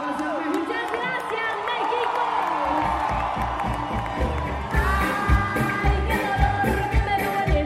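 A huge outdoor crowd at the Vive Latino Festival in Mexico City cheers and shouts continuously at a concert, with whoops rising above a dense roar and a thumping low beat of live music underneath, loud throughout.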